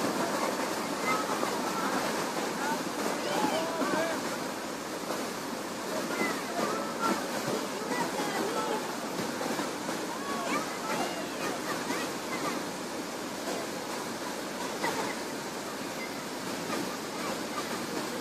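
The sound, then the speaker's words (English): Floodwater rushes through a dry desert wadi in a steady, churning, loud roar, with continuous turbulent splashing and no pauses. It is a flash flood from a rainstorm miles away, while no rain falls at the wadi. “This rainstorm occurred miles away. And in just minutes, it floods this wadi.”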